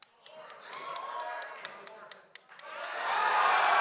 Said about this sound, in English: Wow. Wow. Biggest applause of the night.